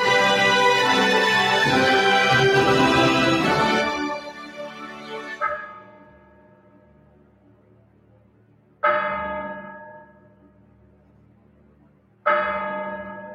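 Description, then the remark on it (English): A clock bell strikes, marking 13 o'clock: after a loud ringing wash fades, three more deep, resonant strokes ring out about three seconds apart, each with a long shimmering decay. No one speaks. “As the clock strikes 13, it's Friday, the 14th of October, year of our Lord, 2022.”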